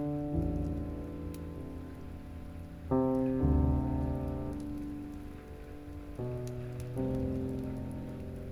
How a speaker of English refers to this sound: Feel the tiny drops of water come down upon you and land upon the crown of your head. Upon your eyes, your cheeks,